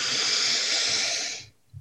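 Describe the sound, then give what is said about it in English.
A single long, steady exhale through the nose during a deep belly-breathing exercise, breathy, lasting about a second and a half before cutting off, followed by a faint soft low thump. “Breathing out through your nose.”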